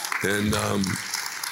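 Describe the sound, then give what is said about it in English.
A thin smattering of scattered clapping runs throughout, with a single voice calling out over it for about a second before the light applause carries on alone. “And you can hear by the smattering of applause just how overwhelming a fucking.”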